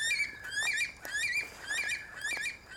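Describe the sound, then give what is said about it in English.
A bush stone-curlew's eerie, wailing calls repeat in rising, quavering phrases in woodland in the evening, loud, with a steady tone sustained beneath them and no talking. “Oh, that sound always gives me a fright at first, but it's just a bush stone curlew.”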